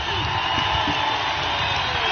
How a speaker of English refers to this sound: So here's Vrabel amidst a standing ovation from the crowd.